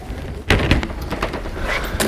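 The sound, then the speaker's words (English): A heavy church side door opens and shuts as people enter the main body of the church: a loud wooden thud followed by a few softer clunks and rattles of the latch over a low, steady background hum. “We've entered via a side door.”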